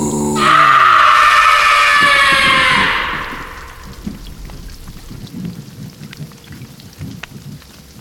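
A loud crack of thunder bursts and rumbles for a few seconds, then fades into steady heavy rain pattering, with no voices, during a storm at night.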